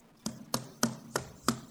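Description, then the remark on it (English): Five sharp, hard knife chops hit a cutting board in a kitchen in a steady, quick rhythm, someone chopping really hard, each a loud thwack with a brief ringing tail and no voices. “Chopping really hard. Throwing the carrots.”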